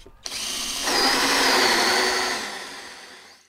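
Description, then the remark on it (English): A power drill whirs up to speed and bores steadily through wood, drilling a hole in a beehive while building a feeding mechanism for the bees, its pitch deepening under load before winding down. Continuous, lasting a few seconds with no voices. “And I gotta drill a hole, then we'll be good to go, ready to go.”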